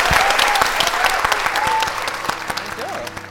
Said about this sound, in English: please, we give a huge round of applause to our amazing guests